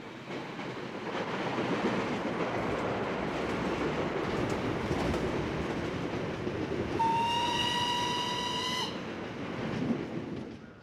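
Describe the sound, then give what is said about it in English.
A train rolls steadily along the rails in Montana with a constant rumbling roar, and partway through a loud horn blares for about two seconds before the rolling noise carries on. “I guess riding all the way to the end of the line in Montana and then turning back around is one way to find out.”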